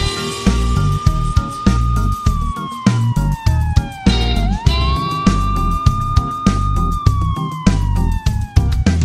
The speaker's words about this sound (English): Hear the sirens come, keep your head down and run, run, run.